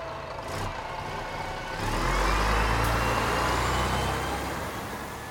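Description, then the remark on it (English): A bus idles with a deep engine rumble that swells louder partway through, holds, then eases off slightly as it pulls away. No voices are heard. “Oh, it came by bus.”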